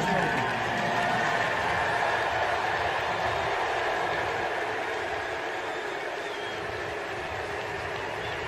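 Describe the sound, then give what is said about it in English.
A loud, sustained baseball stadium crowd ovation in Boston for Mookie Betts at his first at-bat there, thousands of voices roaring and chanting "Mookie" in long drawn-out tones, holding steady for the whole stretch and easing off slightly toward the end. “And this is him getting his first at-bat in Boston and the ovation that he got rightfully deserved.”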